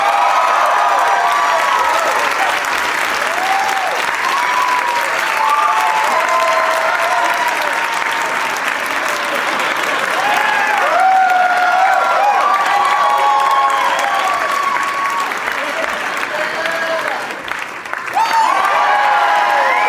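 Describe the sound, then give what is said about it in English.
A crowd applauds and cheers loudly and steadily for about twenty seconds, with dense clapping and scattered whoops and shouts rising above it, welcoming John Hodgman, Tig Notaro, Kurt Metzger and Nick Kroll. “Please give a big warm welcome to my friends, John Hodgman, Tig Notaro, Kurt Metzger, and Nick Kroll.”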